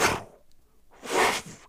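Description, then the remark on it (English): A voice imitates breathing through a mask with two loud, breathy, fluttering whooshes, a short one and then a longer one after a brief pause, like a flag flapping in the wind. “it makes this noise that sounds like a flag blowing in the wind”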